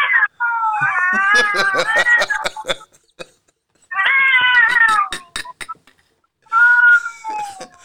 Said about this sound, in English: When they get close and they about to fight, they take this stance where they just look at each other and they just be yelling at each other. This motherfucker got a room full of cats.